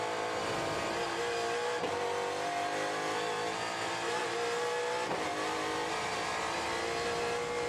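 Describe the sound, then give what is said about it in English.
The loud, high-pitched engine of the number 98 Hyundai race car roars continuously as it passes underneath, its revs holding steady with a couple of brief shifts in pitch, without any talking. “Gottsacke has just gone underneath us as well”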